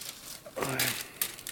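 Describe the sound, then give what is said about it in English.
Papers being shuffled in a few short, crinkly rustling bursts at moderate volume, with a brief murmur of a voice mixed in partway through. “He just wanted to shuffle papers.”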